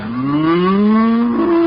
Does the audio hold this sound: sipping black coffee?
no